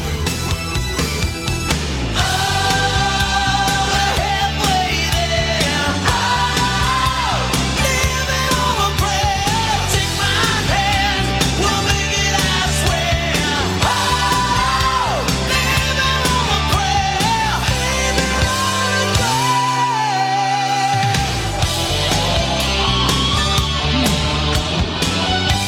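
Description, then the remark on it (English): A loud rock song plays continuously with a driving drumbeat, electric guitars and a sung vocal melody, with the host singing along. The bass drops out briefly near the end before the full band returns. “Carrie twists my arm and yells at me to play this stupid … song once a week”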